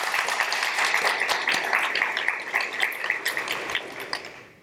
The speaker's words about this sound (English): I think another round of applause for Michelle is more than due.